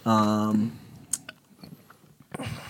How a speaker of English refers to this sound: Like actively, like, chew it. Like, chew it in like your molar area.